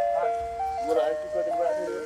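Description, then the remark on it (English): A tinny electronic ice cream truck jingle plays a bright, stepping melody at a steady volume, with faint background murmur beneath it. “Would you be cool having your ice cream truck in a rap video?”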